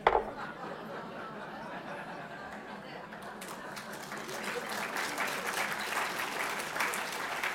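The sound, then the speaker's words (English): A crowd applauds steadily after being shown a slide of a coffee mug reading 'well-behaved women seldom make history', the clapping building from a moderate patter to a fuller, denser burst after a few seconds and continuing to the end, with faint murmurs and chuckles mixed in. “Are you applauding that well-behaved women?”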